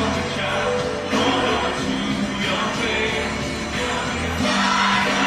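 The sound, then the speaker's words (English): A large stadium crowd roars steadily, a dense wash of cheering with scattered yells and whoops rising out of it, loud and continuous throughout. “Hear the crowd, like they actually like.”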